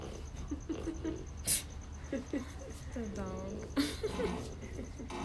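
A dog barks a couple of times in the background, short sharp bursts spaced a few seconds apart, with a whiny tonal sound between them over a low, steady room hum.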